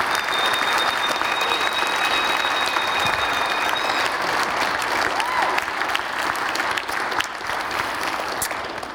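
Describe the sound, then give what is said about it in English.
An audience applauds the Lord steadily, a dense, sustained wash of many hands clapping at once, loud and even throughout, with a thin high tone lingering briefly at the start. “Let's give a clap to the Lord, because I think he deserves that clap.”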